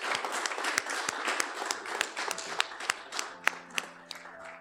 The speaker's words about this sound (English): So I'd like to thank you all for coming out here, and please one more round of applause for both of our presenters today.